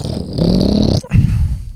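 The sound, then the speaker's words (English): A person imitates a car engine with a low, gravelly rumbling growl from the throat, revving in two loud bursts separated by a brief pause, the second rising slightly in pitch. “You do good car impression.”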